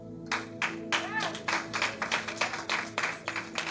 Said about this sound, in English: Hey, nobody in this section over here clap for that one. It was just this section clap.